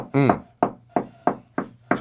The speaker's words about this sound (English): You get a knock on your door.